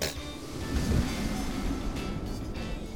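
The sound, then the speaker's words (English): A steady, breathy roar of wind blows for a few seconds, with a deeper rumbling gust swelling briefly near the start before settling back to an even rush. No voices. “What was that? Sounds like wind.”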